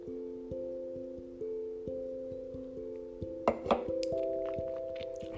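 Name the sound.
sipping wine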